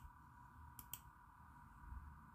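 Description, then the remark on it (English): Two quick, crisp mouse clicks close together, clear, over a steady low electronic hum with no talking, as someone saves and closes open windows on a computer. “So it's just click, save, close, click, save, close.”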